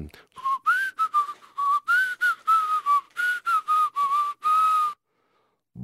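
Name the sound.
whistle being blown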